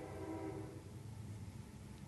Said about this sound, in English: Got awful quiet in here. The train's going by.